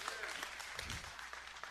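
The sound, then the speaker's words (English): An audience breaks into steady, dense applause with cheering voices mixed in, cheering Jesus, a continuous crackling wash of clapping that holds at an even loudness for the whole moment. “Yeah, okay, let's go ahead, cheer Jesus.”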